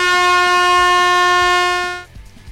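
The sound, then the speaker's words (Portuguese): A loud, sustained air horn blast lasting about two seconds, its bright stacked tones cutting off abruptly, followed by a brief moment of quiet background rumble. “Bem, mais uma buzina”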